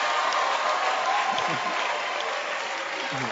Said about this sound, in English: Can you clap your hands for the dancing stars?